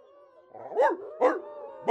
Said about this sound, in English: the wolves! I'm making an elixir in the back. The smell must have attracted them.